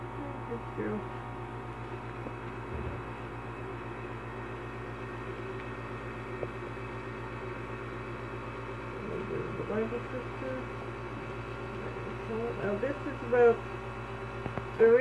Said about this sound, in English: If there's a little noise in the background, that's be my air conditioning. It goes on automatically. I can't stop it.